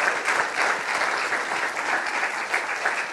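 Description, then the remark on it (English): In the morning, an audience stands and gives a pastor a round of applause: steady, dense clapping from many hands at once in a continuous wash of sound that holds an even loudness throughout, with no voices standing out. “Come on, would you stand up this morning and would you just give a round of applause”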